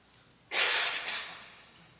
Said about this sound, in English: Sorry, I have this cough that will not go away.